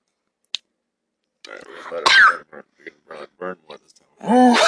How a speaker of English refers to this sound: I coughed a little bit accidentally, sorry.